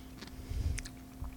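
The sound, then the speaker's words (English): Quiet chewing of softer seasoned pickle chips, with a few soft, muffled crunches spaced irregularly over a low background hum and no talking. “Which was disappointing because the other chips had a crunch, so I was expecting a better crunch with this.”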